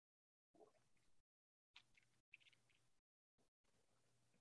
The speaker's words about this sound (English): Devin Booker goes at, that was me drinking some water.